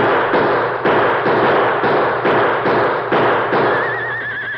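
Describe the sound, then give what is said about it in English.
Rapid gunfire, about a dozen loud shots fired in quick succession with no pause by men at a rock emptying their guns at a rider on a white horse under 30 feet away, and a horse whinnies briefly near the end. “When I give the signal, start shooting, you hear? And don't stop until your guns are empty.”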